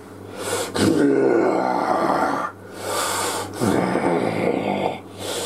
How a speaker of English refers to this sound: But you all see, as we reach the top of initiative, the form of Zorthram Tathara slowly descending to the ground, letting out a terrifying roar.